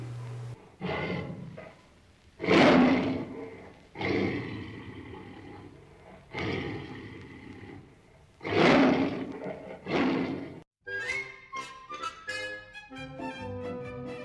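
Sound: tiger roaring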